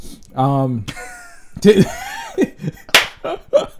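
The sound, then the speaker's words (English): A couple of sharp, loud hand claps break out amid voices and laughter, each a quick smacking crack standing out above the chatter. “That's really not supposed to clap like that, but this is just too much right now.”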